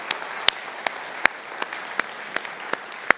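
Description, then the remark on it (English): A church audience applauds to celebrate money raised for Ukrainian refugees and churches in Eastern Europe, many hands blending into a steady wash with sharper claps landing in a fairly regular rhythm, moderately loud and without any talking. “And I think that's something we can clap and celebrate God's faithfulness.”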